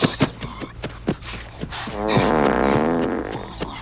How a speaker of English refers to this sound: Your horse has quite a gas problem. It's not the horse. Okay. The true staple of a fine film. Well-placed fart we joke.